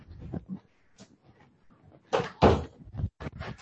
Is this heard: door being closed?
yes